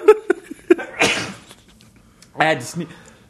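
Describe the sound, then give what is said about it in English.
After a few short vocal noises, a person lets out a loud sneeze, then a second forceful, sneeze-like burst a moment later. “I just sneeze again.”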